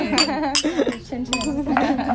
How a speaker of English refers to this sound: And the red mic and the red wine. Wow. Cheers to that. Cheers. Salud. Salud.